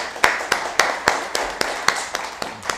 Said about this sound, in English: All right, how about a round of applause for our Lord?